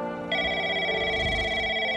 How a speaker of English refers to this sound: She's about to receive an expository phone call.